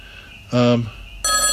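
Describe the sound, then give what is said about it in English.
A phone rings in two loud electronic bursts: a short tonal trill, a brief pause, then a brighter ring that is cut off at the end. “My phone's ringing as well.”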